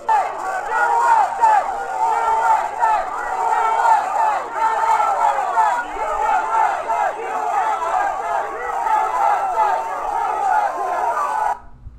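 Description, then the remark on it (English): A large crowd at a barrier checkpoint chants "USA" in unison, loud and continuous, with a steady rhythmic pulse of many voices shouting together outdoors for the whole stretch before cutting off abruptly. “Okay, now you heard the crowd chanting USA, USA at one of the barriers, the barrier checkpoints.”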